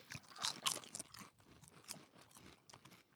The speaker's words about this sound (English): Better than a pork rinds. They're still crunchy. They are. I don't like the flavor, though.